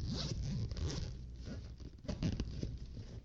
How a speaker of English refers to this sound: It's a big zipper. I just didn't go all the way.